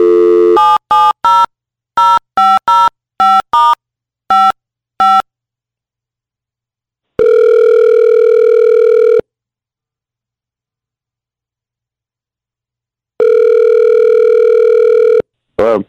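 For a 'War of the Roses' call, a quick series of touch-tone keypad beeps dials a boyfriend's number, followed by two long, steady ringback tones separated by silence, loud and clear with no talking.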